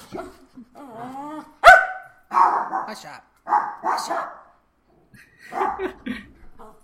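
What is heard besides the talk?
several small dogs barking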